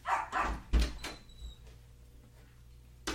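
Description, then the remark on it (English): A few sharp, muffled barks from a household's pet dog, a female, three quick bursts in the first second, then quiet with faint background hum and a last short thump. “That's the wonderful dog.”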